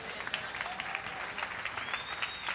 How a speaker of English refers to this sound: Clap your hands for God.